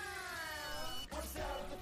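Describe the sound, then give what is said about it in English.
A frog gives a single drawn-out meow-like cry, clear, sliding slightly downward in pitch for about a second, then giving way to a brief burst of scuffling noise and a fainter trailing sound. “Meow, what the fuck? I've never heard a frog make that sound.”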